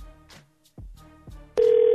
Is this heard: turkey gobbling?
no